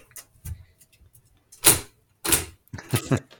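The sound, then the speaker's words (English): A dog door flaps several times in quick succession, sharp knocking clacks with short pauses between, fairly loud, with no voices. “Dog door. I told you.”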